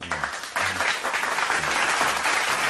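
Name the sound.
applause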